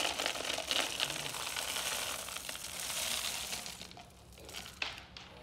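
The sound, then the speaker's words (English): A steady, dense clatter of small hard objects pouring into a container, rattling and clicking for about four seconds, then thinning out to a few last scattered taps. “There's a little handle part here, and if you could just kind of pour them in here and see if we can get them all in now.”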